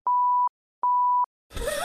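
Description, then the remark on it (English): The built-in buzzer of a GoXLR audio mixer sounds two short, identical electronic beeps at a steady mid pitch, evenly spaced and clear, followed by a sudden burst of rough, noisy sound. “Don't you have a GoXLR? Couldn't you have a buzzer in like 2 seconds?”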